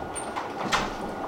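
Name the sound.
door being shut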